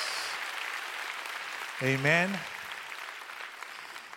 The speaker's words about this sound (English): Give Jesus a big round of applause. Thank you.